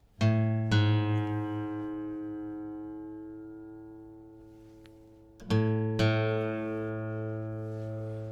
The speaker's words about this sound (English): A little trick that you can use is to keep your notes ringing out while you reach up with your right hand and tune that string. You'll hear them come together just like this.